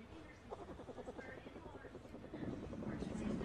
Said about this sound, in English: Did you guys know that bear cubs purr like kittens? And it's cute as fuck. Look at this cute little motherfucker purring his ass off.